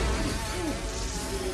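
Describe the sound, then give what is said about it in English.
Leatherface's chainsaw roars as he comes down with it, a steady, raspy engine buzz holding a constant loud drone with slight wavering pitch throughout, and no voices over it. “Oh, Leatherface comes down blaring the chainsaw.”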